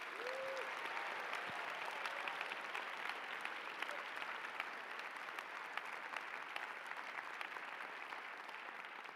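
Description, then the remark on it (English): A large audience claps steadily for several seconds in appreciation of the stage tech crew who do the lighting and stage setup, a dense, sustained wash of applause that stays loud and even throughout with no voices standing out. “Will you show your appreciation to them?”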